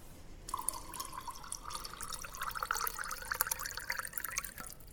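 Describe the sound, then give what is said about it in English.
Water pours steadily into a glass of arak for about four seconds, a bubbling trickle whose pitch rises gently as the glass fills, with no voices. “I mean, I know why you want to add the water after the arak, because of this.”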